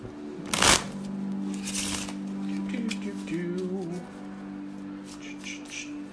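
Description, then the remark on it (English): A deck of cards is shuffled for a card reading, with a sharp riffling burst near the start followed by softer riffles and light card handling, over a steady low hum. “Kellyanne needs some shuffles.”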